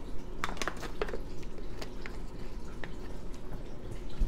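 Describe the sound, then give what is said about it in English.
Someone drinks water: a few wet sips and soft swallowing clicks, quiet and scattered over a faint steady background hiss, with no talking. “I'm gonna take a drink of water.”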